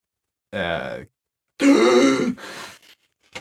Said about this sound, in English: the gasp of life. Like, right, yeah, that was supposed to happen.